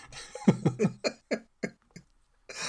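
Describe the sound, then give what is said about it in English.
A spluttering fit of about seven harsh coughs from a person who choked on a drink by not breathing while drinking, loud and rapid at first, then weakening and spreading out before a brief noisy burst at the end. “Look, I have a problem. Yes, not breathing while I drink.”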